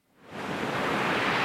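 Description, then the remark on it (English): King tide waves, among the highest tides of the year, surge from the Pacific Ocean against a seawall in the village of Taholah, Washington, on the Quinault Indian Reservation, on a windy day. A broad rushing roar swells up within half a second, then holds steady and loud, with no voices. “One of the highest tides of the year, called a king tide, is hitting the seawall right now.”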